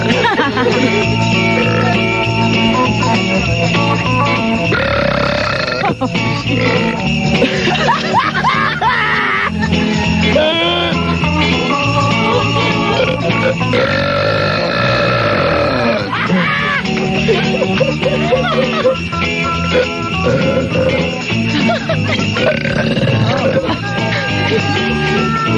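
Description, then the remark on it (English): Loud, drawn-out belching from three people at once, the croaking burps overlapping almost continuously, with grunting and snickering mixed in. “Nobody wants to hear you talk, just belch.”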